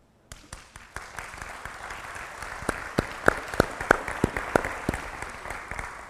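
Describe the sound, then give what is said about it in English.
A church audience at Grace Community Church applauds steadily while one person's loud, sharp handclaps into a microphone stand out on top, about ten crisp claps in a quick, even rhythm growing more prominent toward the end. No one speaks. “It's a little louder if I clap in this thing, so I won't do that again.”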